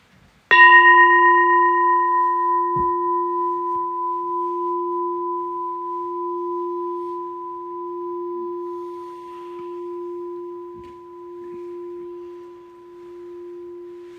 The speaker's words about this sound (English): We'll start in with the bell.